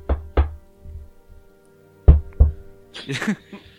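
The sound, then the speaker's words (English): Two pairs of firm knocks on an office door that has a small window, with a pause between the pairs, followed by a brief burst of voice-like sound near the end. “Is that how you knock the dun, dun, dun, dun, dun, dun, dun.”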